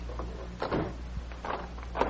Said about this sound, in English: Close the door and lock it